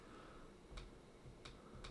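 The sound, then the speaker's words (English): Three crisp computer mouse clicks, made with the left hand, fairly quiet, spaced irregularly over a low background hum with no talking. “You hear me clicking?”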